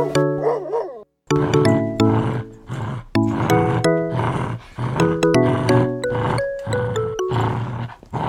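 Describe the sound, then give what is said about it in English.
A rapid series of loud dog barks, pitched and layered into a jingle so they ring out like a tune, with about a dozen sharp onsets over several seconds and a brief gap near the start. “Hot dog. Oh, man. Dog. D-dog. Dog.”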